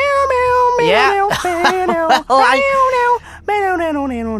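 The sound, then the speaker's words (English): A human voice sings a run of drawn-out, sliding meows in a tuneful rhythm, imitating a cat, with short pauses between phrases; loud. “Do you know that song that goes like, meow, meow, meow, meow?”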